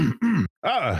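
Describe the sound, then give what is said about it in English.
A voice imitates a little cough: three short, throaty, voiced bursts in quick succession, fairly loud, the last one slightly longer and rising then falling in pitch. “He stands up, looks around at his surroundings, gives a little cough.”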